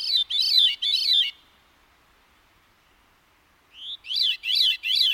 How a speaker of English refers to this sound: When two or more people sing together, they can create harmony by producing different notes at the same time. Astonishingly, many songbirds can create harmony without another bird to back them up, all on their own.